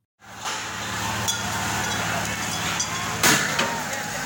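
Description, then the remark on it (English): Water cannons and tear gas used in Sri Lanka to disperse hundreds of protesters at Prime Minister Mahinda Rajapaksa's private residence: a loud, steady rushing hiss over a low engine rumble, muffled crowd voices underneath, and a sharp burst of spray near the end. “You're hearing the sound of tear gas and water cannons being used in Sri Lanka to disperse hundreds of protesters at the Prime Minister, Mahinda Rajapaksa's private residence.”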